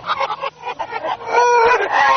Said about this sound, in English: Okay, the Backwards Chickens are going to be flying backwards around the room, so just if you see a chicken coming, realize that it's coming from its backside towards you. Just don't be alarmed. They're quite domesticated,